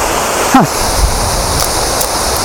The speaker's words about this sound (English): Right, so that's a little waterfall.